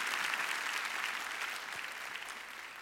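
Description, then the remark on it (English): Steady applause from an audience fills the moment, a dense patter of many hands clapping at once, softening slightly toward the end, with no voices rising above it. “I think we should cheer.”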